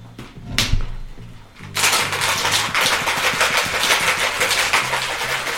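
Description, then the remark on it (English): After a short stretch of low humming, a cocktail shaker holding muddled basil leaves, lime, mezcal and ice starts rattling, a loud, rapid, continuous clatter that keeps up for several seconds. “He's added the ice, the mezcal. And he's about to give it a shake.”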